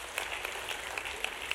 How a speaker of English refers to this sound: Somebody give a clap offering praise to our Lord God.